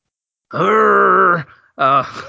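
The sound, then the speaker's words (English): A person lets out a long, loud, low growling groan, then a shorter second growl after a brief pause. It's a voice playfully imitating a growl, with no words. “I got that's your growl.”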